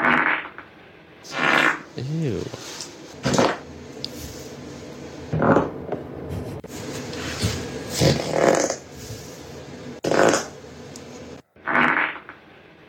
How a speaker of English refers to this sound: But I just want you to hear a nurse's farts. So she's speaking for every nurse. This is how a nurse farts.